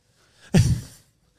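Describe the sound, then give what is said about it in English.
A person imitates an actor's heavy breathing after a big climactic moment on stage, with one loud, forceful exhale. It lasts about half a second and is surrounded by near silence. “It's always that heavy breathing after just a big climactic.”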